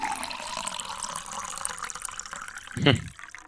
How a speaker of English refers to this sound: or it's a high pour, because you can hear it's almost pressure. Maybe that's what I didn't like about it. It sounds forced. Like, it doesn't sound like a relaxed pour. It sounds like a, let me pour this hard into the mic so I get a good sound.